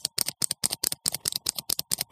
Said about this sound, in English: I also have these U.S. government pens. They have the best click. Clicky, clicky.